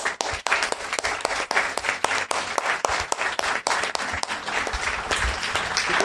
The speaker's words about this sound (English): I just want to say a big round of applause to Chidi, please.